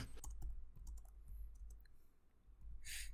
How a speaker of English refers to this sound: The chaser is typing.